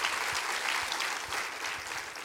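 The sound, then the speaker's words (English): A crowd claps steadily, many hands overlapping into a dense, continuous patter with no voices and no pause for the whole stretch. “Can you clap your hands and say, "I love Revelation chapter 5.”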